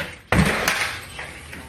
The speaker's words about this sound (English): The deputies smash the door open using a battering ram.